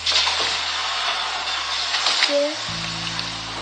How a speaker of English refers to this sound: Honey, would you throw this water on the fire for me?